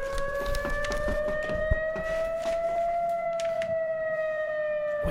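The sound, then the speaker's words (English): A steady wailing alarm siren goes off at a facility, holding a sustained tone that slowly rises in pitch, with bright harmonics above it. Scattered clanks and knocks sound beneath it throughout. “Here, at this facility, we never have drills.”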